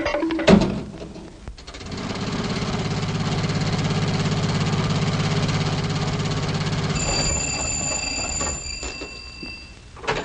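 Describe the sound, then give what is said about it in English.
A jitney car engine turns over and runs with a steady, low rumbling drone for several seconds before cutting off, leaving a few thin, high tones ringing out. No one speaks. “No, I'll take the jitney into town and get my car.”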